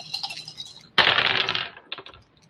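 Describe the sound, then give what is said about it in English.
Dice rolled in a game for a pickpocket attempt clatter across a hard tabletop in a sudden burst of rattling clicks, tumbling for about a second before a couple of final taps as they settle, fairly loud. “Well, 6, 7, 8, 9, 10, plus I got a 1 on the not-so-cool die.”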